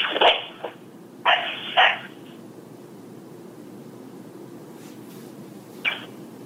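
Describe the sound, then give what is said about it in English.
A dog named Snoozer, heard on a voicemail recording, gives two sharp, muffled barks in the first two seconds over a steady background hiss, followed by quiet and one faint short yelp near the end. “That's a period of time when you hear a snoozer, her dog, bark 2 times.”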